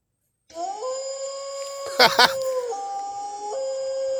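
A long, steady wolf howl holds for several seconds, fairly loud, its pitch stepping between levels, with a brief rough burst partway through.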